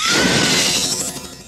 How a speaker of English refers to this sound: What is that? What's that about? Yeah, like an electronic keyboard with a scream.